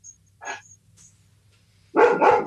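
A greyhound-deerhound cross dog barks inside a house: one shorter bark, a pause, then two loud barks in quick succession at the end. No one speaks.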